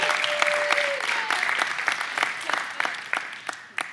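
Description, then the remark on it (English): A dense round of clapping from a group of people, steady and sustained before thinning into scattered, sharper claps near the end, with a faint whistle-like tone early on. “Can y'all just give my wife a round of applause for a job well done?”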